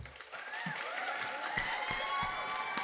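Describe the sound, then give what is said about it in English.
A canned burst of crowd applause with scattered cheering, played as a sound effect from a soundboard; dense steady clapping holding at moderate loudness for a few seconds with no one talking over it. “That one deserves a clap.”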